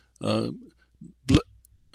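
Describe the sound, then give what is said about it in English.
A single sneeze: a drawn-out voiced 'ah' build-up, a short pause, then a sharp, explosive burst of breath, followed by quiet. “Bless you”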